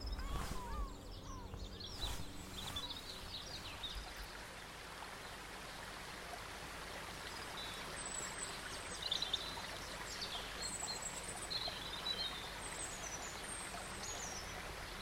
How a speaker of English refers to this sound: So we've got a few different things going on here, but something that's quite cool is that there's a flock of goldfinches sort of twittering in the background, and if you listen closely you can hear them behind all the other birds.